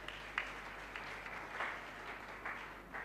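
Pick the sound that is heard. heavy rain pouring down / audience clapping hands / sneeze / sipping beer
audience clapping hands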